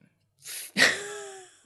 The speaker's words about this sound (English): Gesundheit.